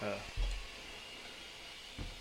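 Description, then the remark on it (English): A radiator gives off a steady, airy hiss that fills the whole clip, broken by a couple of dull low thumps near the start and again toward the end. “Oh, it is the radiator. So loud.”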